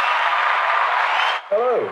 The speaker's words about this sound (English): Round of applause as ever.